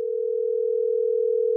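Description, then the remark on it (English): A steady telephone dial tone of an outgoing call hums at a constant pitch, loud and unbroken for the full length, with no voices or other sounds alongside it. “All right, here we go. We're going to call Nah right now.”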